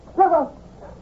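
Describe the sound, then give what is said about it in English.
A dog, Rover, about to be set free, gives a quick double bark, two short sharp yaps run together, then falls quiet against a faint background. “Just wait till I set the dog free.”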